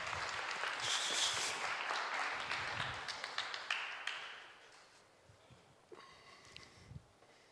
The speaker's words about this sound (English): Yeah, very big round of applause.